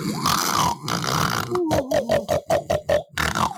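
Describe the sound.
A voice imitates loud snoring: a long rattling, grunting snore followed by a series of short, rhythmic snorting pulses, ending in another rough rasp.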